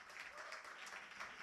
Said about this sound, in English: Applaud the poor, guys.